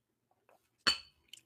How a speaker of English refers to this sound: I just got to pause. I got to pause and take a sip of coffee before I say what I'm going to say.